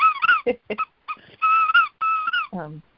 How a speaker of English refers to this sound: Sure. I have a little squeaky dog here, but